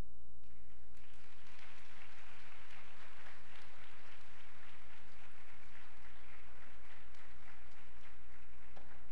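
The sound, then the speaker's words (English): An audience at Salem Baptist Church breaks into sustained applause for school personnel standing during a graduation recognition. After a brief quiet moment, many hands clap in a dense, steady patter that carries on to the end over a faint low hum. No one speaks. “Finally, would school personnel stand to receive applause for supporting students to this point of their educational journey?”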